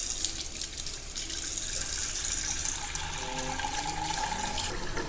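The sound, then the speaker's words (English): Water from a tap pours steadily into a pan sticky with caramel, filling it about half full to clean it, a continuous rush whose tone rises as the pan fills, with no voices. “Fill your pan about with water about half full.”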